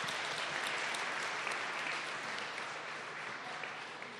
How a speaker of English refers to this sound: Mom is 84. Will you give her a big hand clap for that?